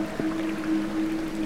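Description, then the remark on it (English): White water of an underground stream rushes steadily along through a low, damp stone tunnel, a continuous churning wash with a low, even hum running beneath it, moderately loud and unbroken from start to finish, with no one speaking. “The candlelight dipped and rose in the underground breeze and spread shadows over the white water ripping along.”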